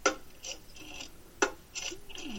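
An old rotary phone being dialed: two sharp clicks, each followed by a buzzy, ratcheting whir as the dial spins back, fairly quiet with no voices.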